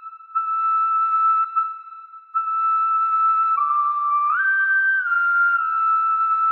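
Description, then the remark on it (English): A professional whistler holds a sustained, pure whistled tone steadily with a couple of brief breaks, then steps up and down in pitch near the end; clear and alone, with no talking. “And if he uses both, he has no direct whistle sound, which is compromising his own, you know, corporeal relationship with this sound that he's been developing for the past 15 years as a professional whistler.”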